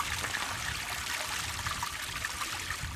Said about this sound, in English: A little burn. Just trickling out of the hill.